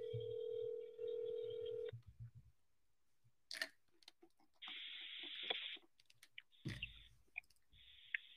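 A steady telephone dial tone hums for about two seconds, then stops, followed by scattered clicks and short electronic bursts as keys are pressed to dial. No one speaks.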